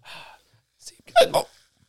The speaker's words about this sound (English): Bubbles. And a hiccup.